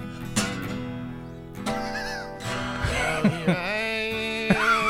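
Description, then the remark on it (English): A goat bleats in wavering, strained cries over a steady music backing, the calls rising and falling in pitch several times across the stretch. “It's a goat.”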